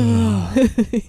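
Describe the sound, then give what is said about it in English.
A drawn-out yawn with a voiced tone that slowly falls in pitch, trailing into a few short, breathy vocal bursts. “I really want to yawn right now. Yawn, man.”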